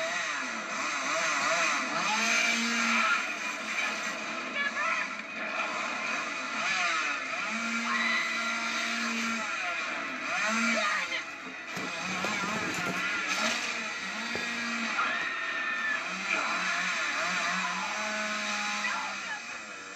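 A chainsaw runs steadily for the whole stretch, its loud buzzing engine whining and surging in pitch as it revs up and settles back down.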